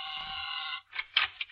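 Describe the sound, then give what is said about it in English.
An office buzzer at the Wistful Vista Travel Bureau sounds in one steady, harsh electric drone for nearly a second, then cuts off, followed by a few short, scuffling bursts of noise. “Press the buzzer, Sil.”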